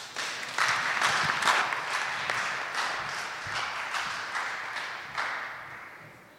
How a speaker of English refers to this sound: And so we're just going to go ahead and give the floor to her, if you guys can. Just give her a round of applause.